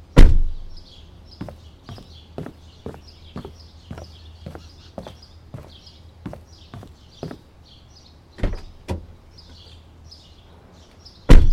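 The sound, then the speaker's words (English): A door opens with a loud thump, followed by a steady run of evenly spaced clicks and another sharp knock near the end, with a low hum beneath and no voices. “Thank you for opening the door.”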